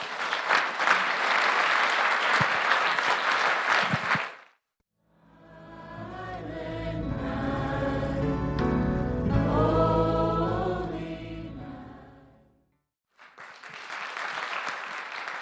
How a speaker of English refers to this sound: Can we give a big hand clap for God?